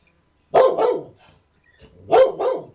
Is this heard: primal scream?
no